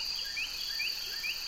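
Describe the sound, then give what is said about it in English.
In late afternoon in autumn, by a small brook winding through old fields and woods, a steady, shrill chorus of crickets and meadow katydids drones continuously at moderate volume, with a Carolina wren's brief rising whistled notes repeating about every half second on top of it. “A Carolina wren sings excitedly against a backdrop of crickets and meadow katydids.”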